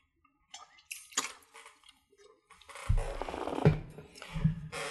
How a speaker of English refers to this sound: Just going to take a brief drink of water.